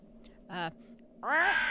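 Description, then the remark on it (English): A person imitates a raven's caw twice, a short harsh squawk followed by a longer, louder, raspy one, with a low hum underneath. “my little raven voice.”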